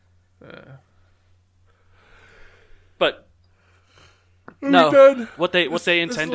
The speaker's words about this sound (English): I'm yawning.